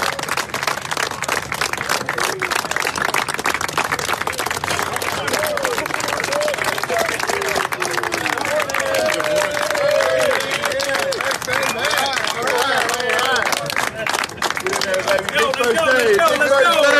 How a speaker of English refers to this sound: And finally, the Christian author Priscilla Shearer shared the following video. It shows fathers lining up to welcome and cheer on their sons and daughters into their first day of school. And there's something about it that's just really cool.